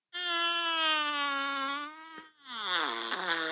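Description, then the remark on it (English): A cartoonish fart sound effect: a long, steady, buzzy squeal for about two seconds, a brief gap, then a second squeaky burst whose pitch slides downward as it deflates. No talking. “I hear that cool. Fart sound.”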